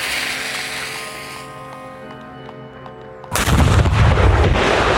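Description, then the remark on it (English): After a few seconds of quiet, humming background, an 18th-century cannon loaded with a blank shot is fired by lighting its fuse, going off with a sudden, loud blast, and its roaring, rumbling aftermath carries on to the end. No one speaks. “An 18th century cannon. I'd loaded it with a blank shot, like, so all that was left was to light the fuse.”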